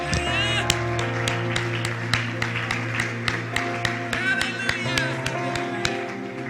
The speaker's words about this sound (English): Oh, just clap your hands again unto God.